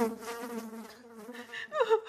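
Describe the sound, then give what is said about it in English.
A thin, whining mosquito buzz drones steadily for about two seconds, moderately loud, with its pitch wavering and rising briefly near the end. “We're going to hear from Mosquito.”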